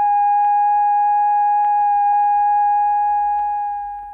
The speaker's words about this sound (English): That is 1,000 cycles, or 1,000 vibrations per second, stripped of all harmonics.